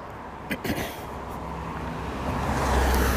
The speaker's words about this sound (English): I have a car going by on my right in a couple seconds here.